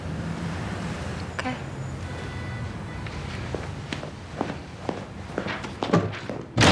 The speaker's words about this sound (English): That's why I slammed the door. Oh. That's why I'm gonna go slam it again.